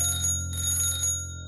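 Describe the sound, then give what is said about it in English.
A telephone rings at Major General Smedley Darlington Butler's residence in July 1933, a call from a man of the American Legion, with a bright, continuous metallic bell tone that holds steady and fairly loud for over a second, then eases slightly at the end. No one speaks. “When you answer, it's a man who says he's from the American Legion.”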